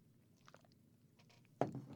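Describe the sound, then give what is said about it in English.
Someone takes a quiet sip of a drink, with soft slurping and small mouth clicks, followed by a louder low knock near the end. No one speaks. “Pardon me while I take a sip.”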